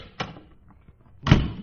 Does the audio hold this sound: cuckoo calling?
no